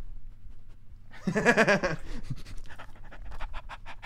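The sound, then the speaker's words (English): A female dog pants quickly and rhythmically, a steady run of short breathy huffs, preceded by a brief tonal whine-like sound. “Good dog. They can hear her, too.”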